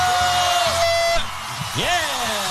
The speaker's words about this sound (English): Yeah, we brought ourselves. Yeah. We screamed for ourselves. We're just randomly screaming.